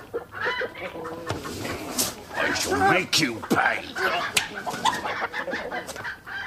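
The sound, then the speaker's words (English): A chicken clucks and squawks agitatedly in repeated bursts, while a man speaks over the flustered noise. “Have you paid for the bird?”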